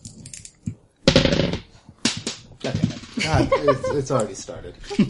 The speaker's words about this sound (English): God, it's already started. The dice are already running away.